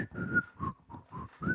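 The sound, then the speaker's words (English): A breathy, faltering whistle sounds five short notes of a tune, with lots of airy rushing breath and the pitch wavering weakly between notes. “I can't whistle. And my lips are dry.”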